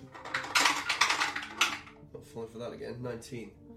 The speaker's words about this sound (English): Dice. D20. On an 11 or higher, something's up.